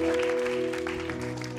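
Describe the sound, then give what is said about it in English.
An audience at Lighthouse Church applauding steadily for the news that the church will help plant another church, a dense wash of many hands clapping at an even, fairly loud level, with sustained low musical tones holding underneath throughout. “That deserves a large round of applause and a loud amen.”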